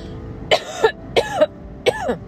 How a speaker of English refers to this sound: I do not have corona. I am just coughing.